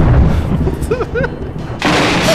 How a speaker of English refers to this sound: he hits the lightning round sound more quickly? It starts with that.